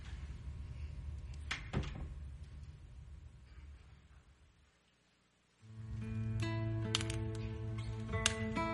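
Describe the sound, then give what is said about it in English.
A door shuts with a solid thud over a low, steady rumble, followed by a few lighter clicks and knocks as a humming room tone settles in. “so if you could grab the door while I grab my book, that'd be great.”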